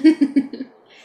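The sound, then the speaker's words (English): A voice gives four quick, rhythmic hooting syllables in imitation of an owl, each a little softer than the last, followed by a faint breathy trail. “Need an owl to help you calm down, and then we can discuss what's happening.”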